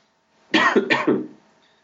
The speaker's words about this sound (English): Sorry, I had to cough there.